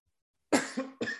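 After a brief silence, a person coughs in a quick burst of two or three harsh coughs, the last one cut off, with no talking around them.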